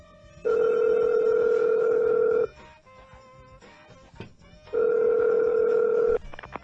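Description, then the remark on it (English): A telephone ringback tone sounds twice on the line while calling to place a food order: two loud, steady electronic buzzes about two seconds each, separated by a quiet pause with faint background noise. “Call this one. No, I got one. Hello? Yes.”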